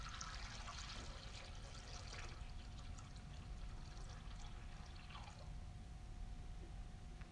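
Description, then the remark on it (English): Water pours steadily into a bowl, a continuous splashing and gurgling that runs for several seconds without pause, with no voices. “And as that bird is bleeding out into the bowl, he's to take water and pour the water over the bird.”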